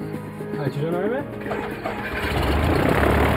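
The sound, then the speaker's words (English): A plane's engine cranks and catches, its pitch sweeping upward in uneven revs before settling into a loud, steady roar that builds toward the end as the plane heads down the runway. “Within minutes, Yates fired up the engine, and the plane was headed down the runway.”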